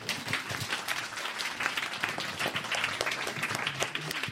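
An audience applauds steadily for about four seconds, a dense wash of many hands clapping at once with no single claps standing out and no voices over it.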